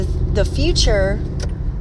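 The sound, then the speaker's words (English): A truck rumbles past on the road, a steady low road roar filling the whole moment while a woman's voice speaks over it. “thank you, truck.”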